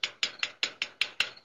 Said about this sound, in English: You're just hearing the police officers knock on the door now.